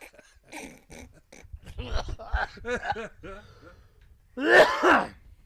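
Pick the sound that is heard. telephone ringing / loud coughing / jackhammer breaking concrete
loud coughing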